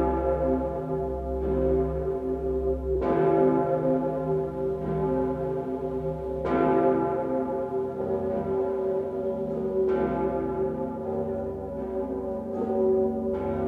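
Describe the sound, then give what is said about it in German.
The Pummerin, a large cathedral bell in Vienna cast from cannons, tolls slowly and heavily, its deep, resonant strikes coming every few seconds, each leaving a long humming decay that overlaps the next. No voices. “Wien, die Pommerin. Gegossen aus Kanonen.”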